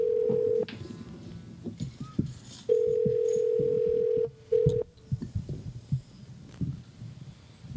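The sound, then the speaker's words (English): An outgoing phone call rings: steady electronic ringback tones sound in a few bursts with pauses between, over a muffled low thumping and rumble in the background. No one speaks. “Or if he'll answer his phone.”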